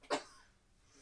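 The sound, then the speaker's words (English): A single sharp sneeze bursts out, loud and brief, then fades into quiet with no talking. “Bless you.”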